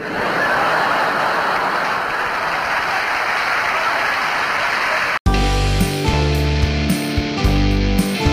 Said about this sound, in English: I'd like to ask your help. Would the people in the cheaper seats clap your hands? And the rest of you, if you just rattle your jewellery.